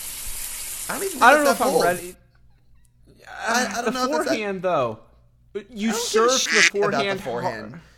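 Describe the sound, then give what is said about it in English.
A frying sizzle sound effect plays in three bursts of about two seconds each, with brief quiet gaps between. Strained, wavering voice-like tones ride over the hiss throughout. “Cue the sizzle, please”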